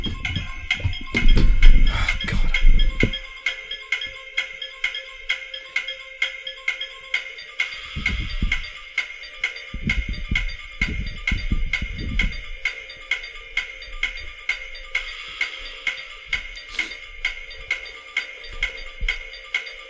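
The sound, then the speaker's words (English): A quiz-show countdown clock ticks steadily and evenly throughout, paired with a bright, tense musical theme, with a few low thuds near the start and no talking. “Start the clock, Carol.”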